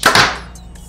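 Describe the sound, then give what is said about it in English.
A bow shoots a 550 grain arrow, measured at 260 feet per second: a single sharp, loud release snaps out with a thwack, followed by a brief ringing decay and faint high after-tones as it fades; no one speaks over it. “And now our 550 grain arrow.”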